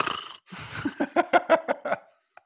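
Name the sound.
voice imitating snoring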